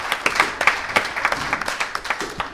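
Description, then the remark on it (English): A crowd applauds steadily, many hands clapping in a dense, uneven patter of sharp claps that holds at a moderate level throughout, with no voices standing out. “Round of applause for this gentleman.”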